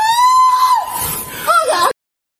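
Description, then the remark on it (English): A man lets out a loud, sustained high-pitched scream that wavers and breaks into strained, cracking cries before cutting off abruptly into silence. “That nigga about screaming like that for the rest of his life in prison.”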